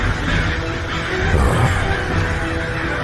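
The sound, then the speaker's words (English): A penguin squawks loudly, a harsh, raspy bird call that keeps going with little pause for a few seconds. “Because you're a penguin.”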